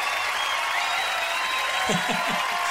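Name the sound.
cheering crowd applause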